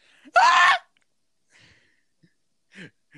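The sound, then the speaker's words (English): A voice lets out a loud, strained mock scream of agony imitating Joseph Joestar, lasting about half a second, followed by quieter breathy groans and gasps trailing off. “Just Joseph Joestar be like screams of agony.”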